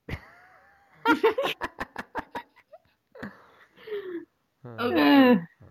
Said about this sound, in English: Yeah, after you finish yawning. We just ate. Sorry.